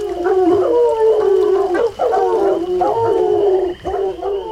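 Several tracking dogs howl and bay together in long, wavering cries, overlapping continuously with brief breaks, loud, with no talking; the dogs have been let loose to go after people.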